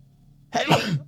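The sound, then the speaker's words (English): After a quiet moment, a single sudden, forceful sneeze bursts out, loud and breathy with a voiced edge, trailing off quickly and followed by a brief sharp sniff. “I really got to sneeze.”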